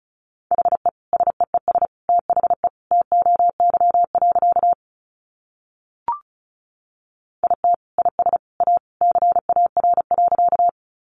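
Rapid Morse code beeps at 35 words per minute on a single steady mid-pitched tone, keyed in quick dots and dashes, with two long bursts separated by a pause broken only by a faint click.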